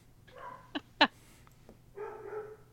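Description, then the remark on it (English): Dogs bark in the background, a couple of sharp yips and a few short barks and whines spread over a few seconds, fairly quiet, with no one talking. “Of course, as soon as I turn the mic back on, they start barking again.”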